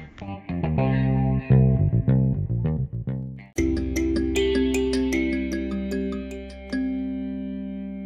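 A phone ringtone plays on its own: a loud, melodic electronic tune of quick notes, then sustained buzzy tones that carry on steadily to the end with no talking.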